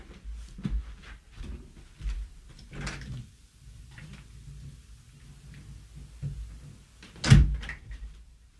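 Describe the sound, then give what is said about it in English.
A door is handled with a series of soft knocks and rattles, then a sharp, loud clunk near the end as it shuts. No one speaks. “I think someone's at the door. Maybe it's a deer. Let me look.”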